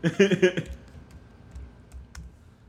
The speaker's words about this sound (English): I'm like typing.